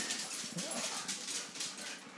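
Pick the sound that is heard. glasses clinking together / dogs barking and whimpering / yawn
dogs barking and whimpering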